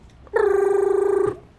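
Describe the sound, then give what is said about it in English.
A single telephone ring, a steady mid-pitched tone with a fast fluttering trill, lasting about a second before cutting off. No one speaks. “It's always at least three rings.”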